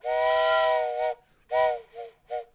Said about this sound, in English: I edited in some whistle sound effects.